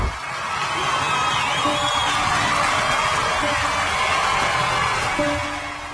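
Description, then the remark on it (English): A large crowd cheers and shouts steadily for six seconds, a dense, loud roar of voices with whoops rising above it and a low rhythmic thump underneath. “Okay, so tell me, the audio engineers here, what are they giving crowd to?”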